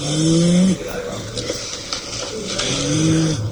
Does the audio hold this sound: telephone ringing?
no